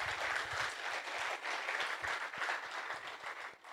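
Steady audience applause, a dense wash of many hands clapping at an even loudness for several seconds, with a few sharper claps standing out and no talking.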